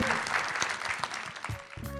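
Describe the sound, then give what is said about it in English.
An audience at a DGA Q&A applauds with dense, steady clapping that fills the whole clip, then a brief burst of music chimes in at the very end. “Huge round of applause for Alex.”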